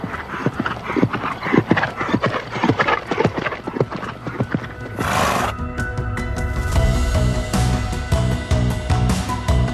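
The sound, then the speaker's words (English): Horse hooves clip-clop in a brisk, uneven rhythm on a hard surface at stables in Cheshire, UK, followed by a short breathy burst, then lighter footfalls over a steady sustained tone. “we're here at my stables in leafy Cheshire in the UK, where I'm based with my team of horses.”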